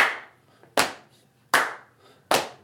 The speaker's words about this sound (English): My hopes were not high that we could add any good percussion, but surprisingly, I just, at the last second... turned out well, man. Yeah, at the last second, I was thinking of just a simple clap, slap the knees, and it worked.